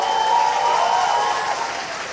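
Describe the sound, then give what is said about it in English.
Sustained applause from a large audience at a climate conference as Brazil's Lula says Brazil is back as a leader in environmental protection, a dense steady wash of clapping that holds at an even, fairly loud level throughout, with no voices standing out. “He said to great applause, Brazil is back in being a leader in environmental protection.”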